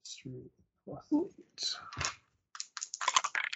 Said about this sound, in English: That's a lot of typing on a non-editable sheet here.